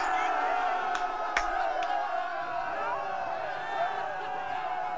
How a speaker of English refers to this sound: They're cheering. They're going into battle.